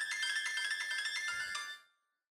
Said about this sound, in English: Let me find it, because people love this fucking one. Hang on, is it this one? It is. That's awesome. Okay, old people love this fucking ringtone.